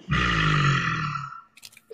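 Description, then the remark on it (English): A person lets out a loud, sustained throaty roar imitation lasting over a second, rough and growling, then it cuts off and a few faint clicks and shuffles follow. “That's a good roar.”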